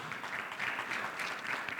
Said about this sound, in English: Can you give the Lord a hand clap of praise?